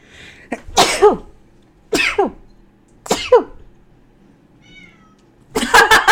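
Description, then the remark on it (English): A cat meows three times in quick succession, each call loud with a falling, drawn-out tone, followed by a brief scuffling burst at the end. “Cat was like, no.”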